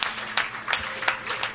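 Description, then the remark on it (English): Audience applause on a Sunday night at the Hideaway in Edmonton, thanking the venue: soft and steady, with a broad crackle of hands and a few louder claps standing out at a regular, even pace. No voices are heard. “And so maybe just as we're waiting here, a round of applause for the Hideaway for giving us a Sunday night home.”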